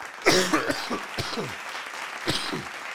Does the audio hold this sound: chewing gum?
no